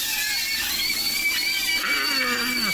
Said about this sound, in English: So the Daily Smash today is Meaty Movies, inspired by this clip from Matt's social ammo of sausages screaming in a pan.